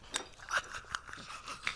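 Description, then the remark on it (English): Crinkly chewing of stiff, glossy paper, with sharp crackling crunches at irregular intervals, fairly quiet and heard alone without talking. “Here's my new piece of asthma. It's called eating glossy paper.”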